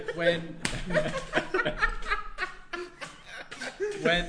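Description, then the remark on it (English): A single sharp hand slap with wrist action cracks out early, then voices chuckle and laugh over it, with another lighter smack landing near the end. “great little slap that it got the perfect wrist action in there.”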